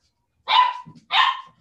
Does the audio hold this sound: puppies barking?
yes